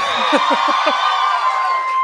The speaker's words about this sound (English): That's right, cheer for her.